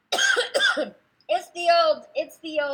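a cough

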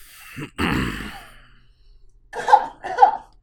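coughing

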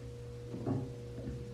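burp

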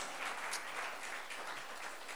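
audience clapping

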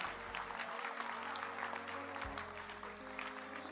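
applause

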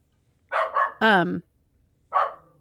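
small dog yapping

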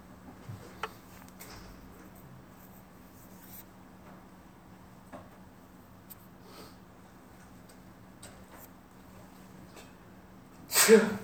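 a person sneezing

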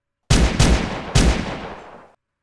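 gunfire

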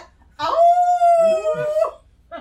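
wolf howling

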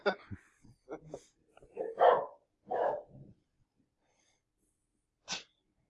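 dog barking

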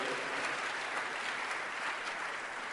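audience clapping hands

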